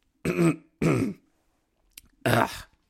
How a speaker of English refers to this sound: I'm rambling. Sorry. Cough.